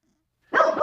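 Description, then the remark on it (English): A dog lets out a single loud bark after a moment of silence, the harsh, throaty sound carrying a slightly drawn-out, growly edge. “Go away, dog.”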